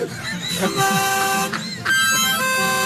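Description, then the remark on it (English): A loud, brassy horn sound effect blares in a few long sustained blasts, with short breaks between them and a slight pitch shift from one blast to the next. “The horn's the best part. I love the horn.”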